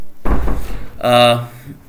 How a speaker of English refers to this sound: I'm going to close the door now.